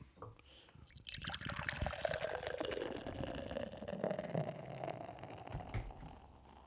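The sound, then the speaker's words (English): A modern West Coast IPA from Coachella Valley Brewing Co. pours steadily into a glass for several seconds, a gurgling rush of liquid whose pitch slowly rises as the glass fills, with a few drips near the end. “Let's go ahead and get the pour and see what they got with the modern West Coast IPA.”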